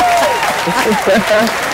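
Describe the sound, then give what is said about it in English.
A short burst of applause from a group, dense steady clapping at a fairly loud level, with some vocal sounds mixed in over the noise, welcoming a caller to a program. “Let's get her applause, because that's always a good feeling thing.”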